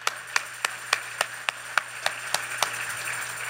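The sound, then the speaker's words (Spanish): An audience claps together in praise of God in a steady, quick rhythm, about a dozen crisp claps over a low constant hum, with no voices. “Give God a hand of praise today.”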